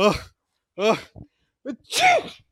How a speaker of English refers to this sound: Oh, you just wasted some pepper in your pockets. Oh, I'm going to sneeze.